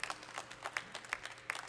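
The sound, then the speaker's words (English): Applause from a debate audience, heard over a live broadcast feed of the debate: steady, dense clapping with many overlapping hand claps, fairly quiet and even throughout, with a few sharper individual claps standing out. “But, dude, all they've got right so far is clapping.”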